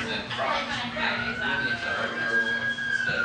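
An ambulance siren wails steadily outside, its high tone drifting slightly in pitch, while people chatter over it.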